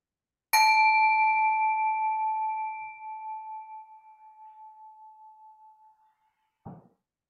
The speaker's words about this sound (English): And when I ring the bell, we are all a bit conditioned to close our eyes, but the invitation is to just keep your eyes open.